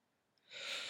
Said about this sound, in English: Why are you yawning? I'm so tired.